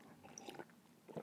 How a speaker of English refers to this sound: Oh, that was a full sip of tequila. A full sip. A full sip.